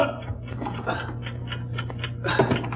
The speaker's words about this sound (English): Yes, the ticking's coming from inside the bag. Open it, man, instantly. It may be a time bomb placed there by Marco's ring.